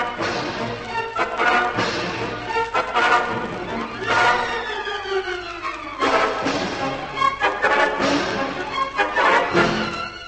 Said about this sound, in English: With a squeal of hatred, the immense pig flings himself at Algy and knocks him to the ground.